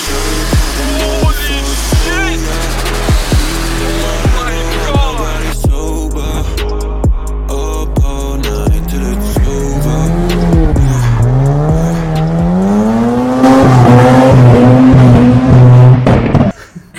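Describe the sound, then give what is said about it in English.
A Toyota Supra's engine roars loudly with rising and falling revs while tires squeal in long wavering shrieks, continuous for the whole stretch with no talking. “you got some insane footage from that day with that Supra.”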